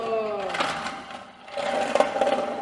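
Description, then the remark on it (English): A 100-year-old non-electric vacuum cleaner with a bag and no electric cord is hand-pushed, whirring and rattling in uneven surges as it rolls, growing louder toward the end, with a brief voice near the start. “Okay, now he's pushing this vacuum cleaner, and it's like those little rev-up cars that you run across the floor and then pick up and do it again and again and again.”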